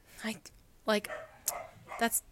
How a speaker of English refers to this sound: My dog's barking.